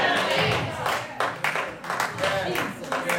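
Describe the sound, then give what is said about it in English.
Three people clap unevenly, the sharp hand strikes scattered and irregular rather than a full applause, with some voices murmuring underneath. “I only got three people clapping with me now.”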